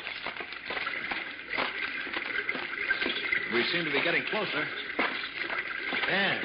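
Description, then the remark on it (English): Swiftly flowing water of a small underground river rushes in a steady, continuous hiss throughout, moderately loud, while a man speaks over it. “Oh, I think I hear running water.”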